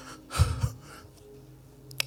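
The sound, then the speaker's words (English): A preacher imitates heavy panting, two quick, loud, breathy gasps close together near the start, mimicking a woman entering a church in London during his sermon, followed by quiet and a brief click at the end. “Breathing, panting.”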